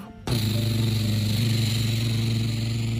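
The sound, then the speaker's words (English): A Spy Kids helicopter flying overhead over the mountains, heard as a steady, loud engine drone with deep humming tones that starts abruptly after a brief burst of noise and holds evenly throughout, with no talking. “As the helicopter zoomed over the mountains, right over the bad guys, they started to dump all ton of water on top of the volcano.”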